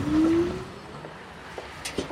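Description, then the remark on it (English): A subway train rolls into the station with a low, steady rumble and a rising electric whine at the start, which fades into quieter rolling noise broken by a few sharp metallic clicks near the end. “The train is rolling in.”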